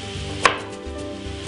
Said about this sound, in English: So we're going to dice this just like we did with our turnip before the show.